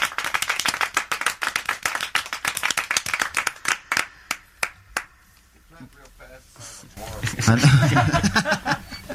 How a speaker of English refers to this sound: Thank you for the clap. Mighty fine.